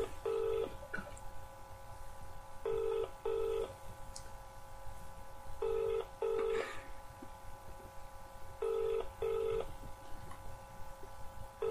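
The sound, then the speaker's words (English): A telephone ringback tone for a prank call repeats its double ring four times at a steady pace while the call goes unanswered, sounding clear as if through a handset, with faint background hum. “She's not answering.”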